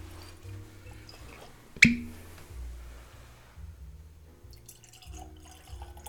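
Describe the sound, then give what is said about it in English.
Hazelburn 10 whiskey poured into a glass: a sharp glassy clink, then a soft, steady trickle of liquid that gradually fades, with no one speaking. “Get your glass rinsed out. Oh, yeah. Good to go? Yeah, I'm good to go, man. Let me pour you a...”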